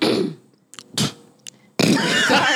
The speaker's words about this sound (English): Can I clear my throat? Hey, yeah, you do whatever you need to do. Sorry, clear my throat.